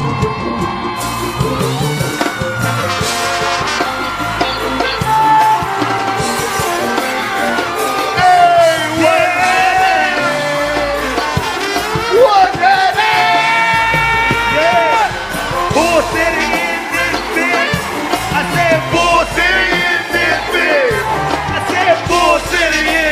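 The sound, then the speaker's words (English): A large live audience at a show in Durham roars continuously after being urged to get as loud as possible, full of overlapping yells, whoops and cheers, loud and sustained for the whole stretch with excited voices shouting over one another. “I'm gonna need y'all to get as loud as you can, y'all.”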